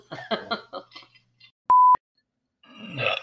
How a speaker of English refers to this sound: That was a beautiful weird burp. Sorry, it was a weird burp. It's like you were possessed by the demon.